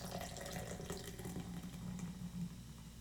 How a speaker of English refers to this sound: I'm so sorry. If you could hear that. That was rude of me. I just poured some beer.